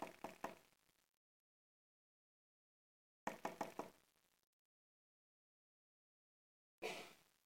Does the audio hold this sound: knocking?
yes